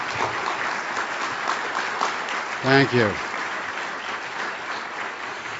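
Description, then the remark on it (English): Steady applause from an audience for the host committee members, a dense wash of clapping that fills the whole clip at an even level, with a brief spoken thank-you rising over it midway. “The host committee members are listed on page 5 of your program book, and I want to ask you if you'd give them a round of applause for all the hard work they've done this last year in getting ready for you.”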